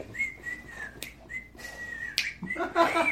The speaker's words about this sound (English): And then he starts whistling.